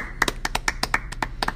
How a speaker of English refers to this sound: Please give us a round of applause.